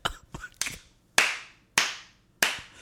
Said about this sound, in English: stop slow clapping for me. I'm not. Put your hands down.